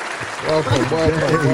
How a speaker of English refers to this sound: so I'm going to bring her in to the podcast with a round of applause.